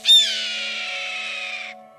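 A single hawk squawk: one long, hoarse, high-pitched scream that bursts in loudly and holds steady for under two seconds before cutting off. No voices.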